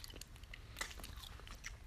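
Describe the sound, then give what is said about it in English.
Wet crunching of someone biting into and chewing a crisp apple into a microphone, purposely chewing with the mouth open, with a sharp bite near the middle and steady open-mouthed munching throughout, quiet. “And yes, I am purposefully chewing with my mouth open so you guys can hear every single bite I take.”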